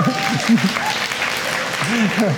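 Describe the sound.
A crowd claps steadily, a dense, even wash of hand claps lasting a couple of seconds, with voices calling out and talking over the applause.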